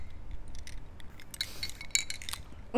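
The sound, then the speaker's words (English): Glasses of drinks clink together in a toast just before the drinks are tasted, a few light, bright taps with a short ringing tone over a quiet hum; a voice starts speaking right at the end. “Okay, so let's drink it. I'm gonna try the 6 p.m. so you try the 2 a.m. okay. Cheers.”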